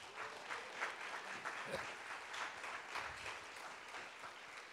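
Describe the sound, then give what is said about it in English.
Steady audience applause fills the space, many hands clapping together in a dense, continuous patter that holds at an even level throughout, as a guest invited to tell her story comes out onto the stage. “Give her a round of applause as she comes out.”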